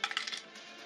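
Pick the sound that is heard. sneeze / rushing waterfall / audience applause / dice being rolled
dice being rolled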